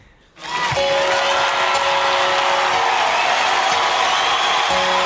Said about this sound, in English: The crowd clapping.